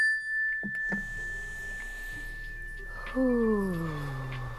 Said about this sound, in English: So when you hear the mindfulness bell, everybody just take a slow, deep breath.